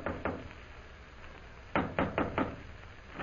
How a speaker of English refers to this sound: Immediately after leaving the consul, Jim hurries to the Central Hotel, goes to room 419, and knocks on the door.